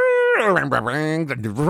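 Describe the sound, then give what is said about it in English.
A voice mimics boat sounds: a steady, held hoot like a horn, then a lower, wavering drone that rises and dips over under two seconds, loud and continuous. “Those are boat sounds.”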